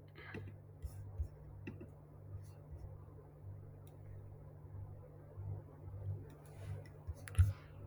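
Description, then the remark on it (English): Quiet, sparse keyboard typing: scattered soft clicks and taps over a low steady electrical hum with faint murmuring in the background. “I'm typing in 1 second.”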